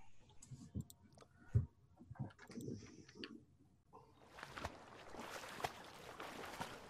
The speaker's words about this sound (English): Ooh, nice water sound. So you begin walking out into the water and you dive your head underwater and begin swimming forward.